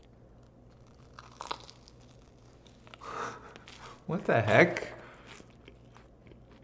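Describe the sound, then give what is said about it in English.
A few crunchy bites into an air-fried marshmallow, with a loud crackling chew near the end. A person briefly speaks between the crunches. “This seems crunchy. It's so fluffy, yet so crunchy.”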